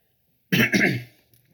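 A single harsh cough from a person with a bad cough, in two quick bursts, loud and raspy against otherwise quiet surroundings, trailing off into a short breath.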